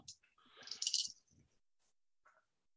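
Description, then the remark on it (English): A short clatter of three polyhedral dice, a D10, a D12 and a D6, tumbling across a hard surface, a rapid burst of bright clicks that fades within about a second, followed by a faint single click. “So that's a D10. D12. And then, since we're in the green, a D6.”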